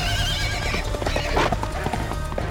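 A horse lets out a loud, bellowing neigh, followed by the rapid, rhythmic pounding of galloping hooves as Nessus charges through the forest.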